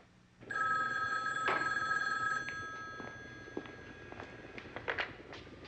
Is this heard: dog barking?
no